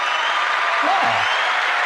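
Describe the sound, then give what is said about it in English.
A burst of canned applause from a sound-effect button pressed on a show: steady, dense clapping that holds at an even, fairly loud level for about two seconds. “Just, I hope this button's going to be a round of applause.”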